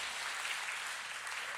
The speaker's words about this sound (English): Yes, you can clap. That's a good cue.